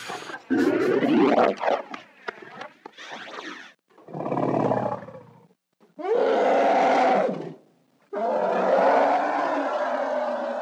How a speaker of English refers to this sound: He, for the sound of the Rancor, he recorded his neighbor's, like, especially cranky, like, poodle or something, like, tiny dog, and slowed it down.